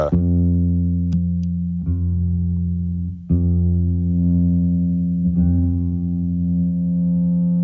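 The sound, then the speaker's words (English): An electric guitar through a simply set T-Rex Tone Bug reverb pedal plays a few struck notes that smear into a thick, sustained droning wash, swelling and ringing continuously like a self-oscillating tone, with no talking. “Then after that is this T-Rex Tone Bug reverb. I have it set real simple, but it washes out into just nothing.”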